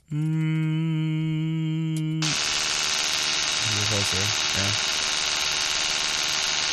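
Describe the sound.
A voice mimics an electric toothbrush as a sound effect on request, with a steady droning buzz for about two seconds, then gives way to a loud, continuous hissing whirr with a few short wavering vocal sounds underneath.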